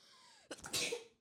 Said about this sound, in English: I'm allergic to onions. Sorry, the onions are making me sneeze.